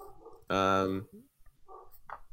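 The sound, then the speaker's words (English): A single loud, drawn-out dog bark rings out, followed by quieter, muffled voices and a few soft sounds in the background. “My dog is barking.”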